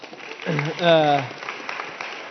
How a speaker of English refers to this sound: And then he got dragged on stage. We can clap for that.